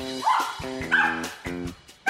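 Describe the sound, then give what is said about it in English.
A dog barks several times in quick succession, sharp yips and bow-wows, with brief pauses between the bursts and no one speaking. “here seems to be enjoying a dog's life.”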